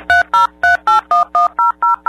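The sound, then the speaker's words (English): Nine quick phone keypad tones punch in a wireless phone number, starting with the area code, on a 2005 Singular Wireless customer service call, at a steady, even pace, each press a short two-note beep, loud with nothing else audible. “To access your information, please enter your wireless phone number, starting with the area code.”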